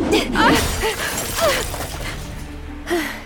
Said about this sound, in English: It's a windmill sail. It shattered that street lamp into pieces. The wind must have ripped it right off its post.